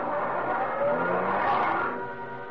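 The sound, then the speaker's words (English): A car that had been waiting by the road revs and rumbles, swelling briefly with a hint of tire noise before easing off slightly as the vehicle pulls away. No one speaks. “Then we turned toward the road, got into a car that was waiting for us.”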